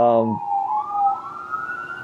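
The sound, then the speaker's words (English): A police siren sound effect wails in a smooth, loud rising-and-falling sweep, with a brief burst of voice at the very start before the siren carries on alone, used to signal a transition to a new section. “It's the siren that, like, signaling the transition.”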